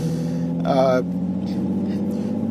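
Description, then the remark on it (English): A steady low engine drone from inside a car driving home from work in heavy traffic, with a short, louder tonal burst near the start and faint voice-like sounds over the constant rumble. “Yep, as you could hear, I am on my way home from work, and it's probably going to take me about 3 hours, the way this traffic is looking, but don't worry, I'm not going to be on radio for 3 hours.”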